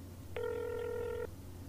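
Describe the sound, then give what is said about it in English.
A single ringback tone on a phone line as a call is placed to a landlord, one steady electronic burst lasting just under a second, heard alone over faint low hum. “It's ringing.”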